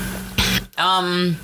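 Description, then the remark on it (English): A woman with bronchitis coughs in a studio: a single harsh cough bursts out, then a brief pause and a drawn-out voiced throaty sound, like someone clearing their throat. “So she's coughing all over my studio.”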